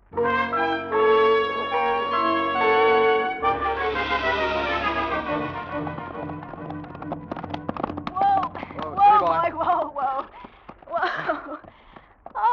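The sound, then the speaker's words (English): Ridden horses gallop with a fast, rapid thudding of hooves that rises out of sustained orchestral music and keeps drumming steadily, with voices breaking in over the hoofbeats toward the end. “We ought to walk in, though. Cool the horses down.”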